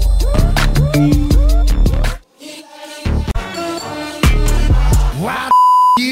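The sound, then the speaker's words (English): A punchy, busy music jingle with plucked hits and a brief drop-out, ending in a steady, clean censor beep tone that holds for about half a second over the music. “We're going to take a look back at something that happened on the show and see if you can guess what the beep is behind the beep.”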